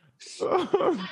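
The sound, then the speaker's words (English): A sneeze: a short breathy intake gives way to a loud, voiced burst whose pitch drops sharply, followed by a second falling, explosive push of breath. “Bless you.”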